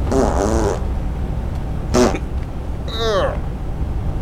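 Three separate farts: a long buzzing one, a short squeaky burst, then a quick one that slides downward in pitch, over a low steady background rumble.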